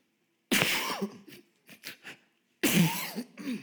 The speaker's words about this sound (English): Forgive my cough.